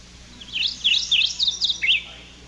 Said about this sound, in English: This is a morning warbler. This is one of the suspects.